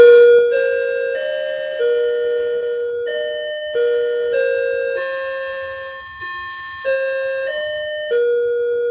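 Bells ring out a slow melodic sequence of clear, sustained tones, each strike overlapping the last as the notes step up and down, loud with no voices.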